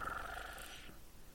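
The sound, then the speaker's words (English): A cat's soft, rumbling purr, used as a phone ringtone while a call keeps ringing, plays quietly for about a second before trailing off, with no voices present. “It's still ringing, but it's just purrs.”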